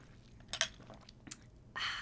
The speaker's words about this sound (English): it makes like this really delicious lemon, lime, citrusy mocktail. I mean, you could put alcohol in it if you feel so inclined, but I'm sipping on that, and let me get a sip.